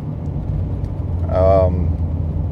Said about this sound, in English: Wanted to pass this car safely before looking back at my notes.